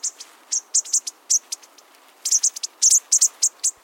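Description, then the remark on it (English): A bushtit flock keeps up a stream of thin, high-pitched twittering calls, short notes overlapping irregularly in quick bursts, soft, with no other sounds around them. “Their quiet calling helps them keep track of one another.”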